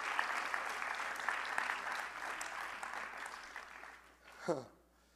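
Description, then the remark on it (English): An audience at a sermon claps hands to the Lord in a dense, steady wash of applause for about four seconds, then it thins out and a single voice cries out briefly, sliding downward in pitch. “Now clap your hands to the Lord.”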